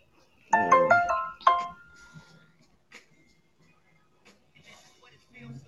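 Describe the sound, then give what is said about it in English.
A phone notification alert sounds: a loud, bright melodic chime in two quick bursts, followed by near silence with a few faint background noises. “All right, yeah, because the people, I just got a notification myself, so people probably going to start getting them.”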